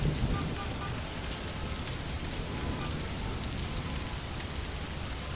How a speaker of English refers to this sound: But more than that, it feels like the heavens opened and all of the rain that's in the sky is falling out. Every single drop. Wow. I've never seen so much rain all at one time. The streets are flooded.